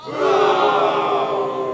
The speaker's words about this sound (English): More boos.